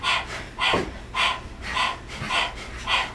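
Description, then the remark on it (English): A person pants like a dog with the tongue out as a breathing exercise, focusing on the exhale, producing rapid, breathy exhales in a steady rhythm, roughly six loud puffs of air in a few seconds with no talking. “Stick your tongue out of your mouth and begin to pant like a dog, focusing on the exhale.”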